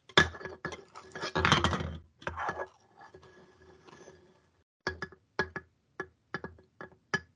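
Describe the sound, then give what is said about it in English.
Empty beer cans and bottles are rolled around, rattling and clinking, a dense clattering jumble at first, then a slower series of sharp, separate clinks with brief pauses between them, fairly loud. “Paul's ASMR is just, like, rolling around empty beer cans and bottles. Having them clink.”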